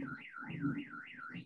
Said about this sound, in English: Speaking of quiet, some fucking jackass just drove right by my window in his motorcycle and set off a car alarm. So that's going to be fun to listen to.